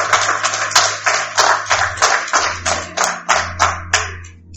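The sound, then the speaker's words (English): A crowd at a sermon applauds together for God, many hands clapping in a dense, steady wash with sharper claps falling in a regular rhythm, fairly loud, with a low hum underneath and no talking. “Let's give God a hand clap. Hand praise. Clap praise. Just give him a round of applause.”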